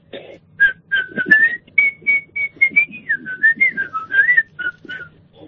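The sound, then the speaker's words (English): Someone whistles the Blue Peter television theme tune: a bright, jaunty melody of short repeated notes that bob up and down in a quick, steady rhythm, clear and fairly loud, with no talking over it. “Blue Peter.”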